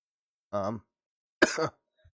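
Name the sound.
coughing and throat clearing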